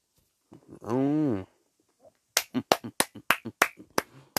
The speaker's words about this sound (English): Let me get some hand claps up in here.